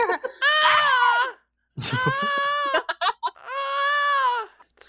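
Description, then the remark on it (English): A male cat, having just come into the house, screams loudly in three long, drawn-out yowls, each wavering and falling in pitch, with short pauses between them and a few brief sounds in the gaps. “When he first gets into the house, he starts just screaming pretty much.”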